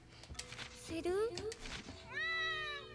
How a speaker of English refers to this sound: Space cat still can't speak anything but cat.